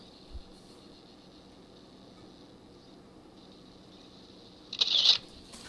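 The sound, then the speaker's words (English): A single brief papery swish near the end as a book page is turned, following several seconds of quiet room tone with a faint low bump early on. “Turning the page.”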